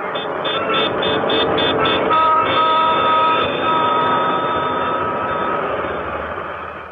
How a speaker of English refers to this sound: The dusty clatter of subways.